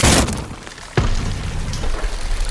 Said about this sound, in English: I grabbed my life jacket under the bed, just as the cabin cracked, the front of it splintering.